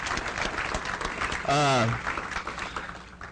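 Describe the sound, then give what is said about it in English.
Steady crowd applause in thanks to the Providence of God Outreach Network, a dense patter of many hands clapping for a few seconds, with a single loud voiced cheer rising out of it midway. “So let's give us a round of applause for them.”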